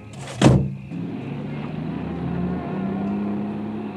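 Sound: car approaching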